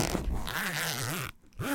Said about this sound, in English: That was unzipping the sea pencil case or whatever it is.